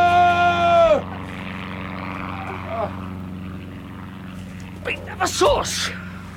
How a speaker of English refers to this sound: Listen. What's that? No, not sure. No, no, listen. It's a plane. Well, it can't be. Wait. Wait. Huh? There it is. Look, there. A helicopter.